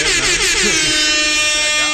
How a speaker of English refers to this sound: I got to give you air horns for that.